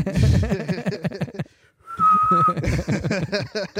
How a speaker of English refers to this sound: So I was, when I saw him, I was like, how am I going to take this guy down? You know, that was my first immediate thought. With a rape whistle?